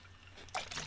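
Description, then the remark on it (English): A short sip of seltzer water: a quiet slurp followed by a soft crackle of bubbles, lasting under a second with no talking. “I'm drinking this seltzer water.”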